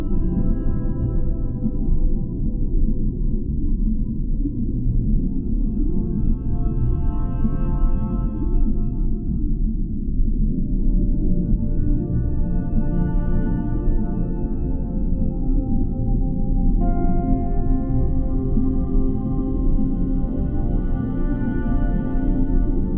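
Deep, drawn-out blue whale song: low moaning tones glide slowly over a constant rumbling drone, steady and fairly loud throughout, with no voices.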